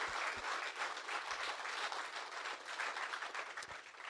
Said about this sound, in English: Round of applause for that one.